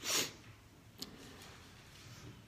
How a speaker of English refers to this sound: I got a cold, that's why I'm sniffing.